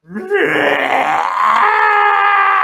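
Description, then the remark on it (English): A voice imitates the shriek of a monstrous giant eel with glowing yellow eyes and a mouth of razor-sharp teeth: a loud, strained cry that starts as a groan and swells into a sustained, harsh screech lasting a few seconds. “Its mouth of razor-sharp teeth open, and it lets out a horrible, horrible shriek.”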